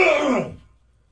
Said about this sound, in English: Excuse me, along the way. Could have been clearing your throat.